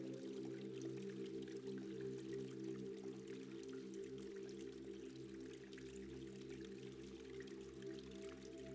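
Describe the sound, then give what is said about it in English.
A soft, continuous stream of fresh water pours from a small spout into softly bubbling hot water, splashing steadily without pause, with a low resonant hum underneath. No voices are present. “As fresh water, it falls in beside you from a small spout.”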